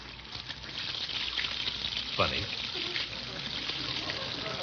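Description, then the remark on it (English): A tap runs steadily, water pouring and splashing into a hot water bottle with a constant hissing rush; the water is not very hot. A voice briefly speaks a word partway through. “Not very hot.”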